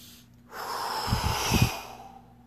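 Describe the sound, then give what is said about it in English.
A slow, deep meditative exhalation, a long soft airy rush that swells and then fades, with no talking over it. “Breathe out all of that.”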